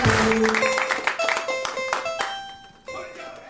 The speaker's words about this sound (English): Get ready to clap. Put your hands together. Put your hands together.